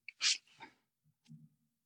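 A man coughs: one sharp, loud, breathy burst, then a weaker follow-up, and finally a faint low throaty rumble before silence.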